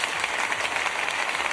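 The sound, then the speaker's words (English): A crowd applauds steadily, many hands clapping in a dense, even wash of sound that holds at a constant loudness throughout, with no voices standing out. “Oh, I was expecting booze there, not actual claps.”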